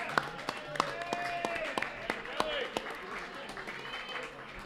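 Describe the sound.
Scattered, uneven claps from an audience, given for the people who made the event happen, ring out over a steady murmur of voices, with a few rising, sing-song calls mixed into the crowd noise.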